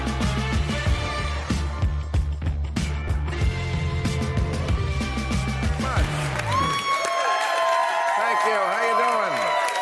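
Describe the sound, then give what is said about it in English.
Upbeat band music with a thumping bass plays, then gives way to a loud crowd cheering and whooping, high excited voices rising and falling together as the applause swells. “Sounds almost like a full crowd.”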